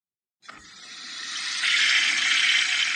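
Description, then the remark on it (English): A toilet flushes after a moment of silence, its rush of water starting abruptly and swelling into a loud, steady hiss that continues to the end, with no voices. “Oh, yeah, that's the Toilet Flush Award.”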